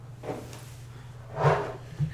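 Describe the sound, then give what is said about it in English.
An airlock jettison sound effect as an AI is jettisoned: a low mechanical hum runs throughout, broken by a soft rush early on, then a louder whooshing thud and a short final thump. “Okay, so that I hear that, and I know what's going on. Yeah, you hear a. You feel that jettison.”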